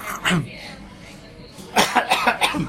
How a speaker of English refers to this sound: It's quite difficult to cut coughs out with the background noise